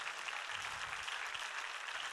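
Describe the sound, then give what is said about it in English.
A crowd of people applauding together, a steady, dense wash of many hands clapping that holds at an even level for about two seconds, with no voices over it. “Come on, somebody ought to clap for that.”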